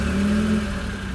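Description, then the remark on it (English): A car engine rumbles steadily, a low droning hum with a brief rising whine early on, then settles into an even idle. No voices are heard. “Then he hid under a huge metal box on wheels. Cat settled in nicely until, perhaps hours later, he heard this.”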